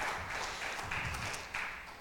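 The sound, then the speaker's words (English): A crowd applauds a woman who has just spoken, in a steady, dense wash of clapping that holds at an even, moderate level for the full two seconds, with no voices over it. “Oh, give her another round of applause, guys.”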